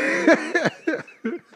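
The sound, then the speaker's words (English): A run of four fairly loud coughs in quick succession, each a sharp voiced burst that fades before the next, with no talking. “See, you didn't hear the first click because I coughed.”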